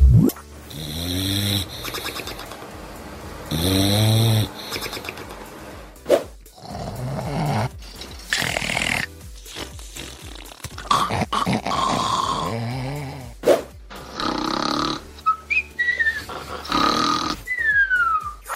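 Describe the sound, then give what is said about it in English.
A run of loud snoring: three different snores in turn, with rasping, growly inhales and voiced, snorting exhales, some whistling at the end, and no talking. “We got 3 new snores today, Mitch. Have a little listen.”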